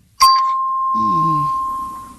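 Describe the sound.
A doorbell chime strikes sharply and rings out as a steady, sustained tone that fades slowly, with a brief voice murmuring underneath partway through.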